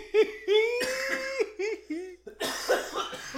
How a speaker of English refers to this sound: Yeah, it's very purple. Might be a terpene in there that tends to make you cough.